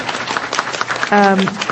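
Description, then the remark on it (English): A crowd applauds steadily for four roundtable participants, dense clapping at moderate volume, with a brief sustained vocal cheer rising over it near the end. “Just one more round of applause for all four of our roundtable participants.”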